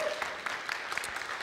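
An audience applauds: many hands clapping at once in a dense, crackling wash of claps, fairly soft and steady throughout, with no one speaking.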